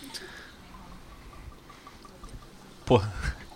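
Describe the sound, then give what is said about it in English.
Rum is poured straight from the bottle over ice in a soft, steady trickle, ending with a brighter splash and clink of cubes near the end. “This is straight from the bottle on rocks.”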